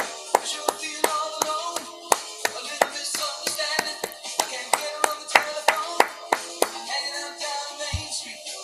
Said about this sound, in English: You're not very good at keeping time with the clapping, by the way. What do you mean? Well, you're clapping along with the music, but it was like so off.